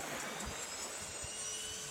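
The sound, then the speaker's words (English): The right engine of an aircraft turning over: a steady, loud turbine roar with a high whine on top and low thumping rumble beneath, continuous throughout. “Right engine is turning.”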